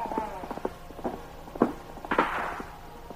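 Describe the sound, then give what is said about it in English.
Hooves of a riderless horse galloping down a trail beat out a quick, uneven rhythm of hard thuds, a few louder strikes standing out, with no voices over them. “The Pony Express rider fell headlong from his horse while the animal continued down the trail alone.”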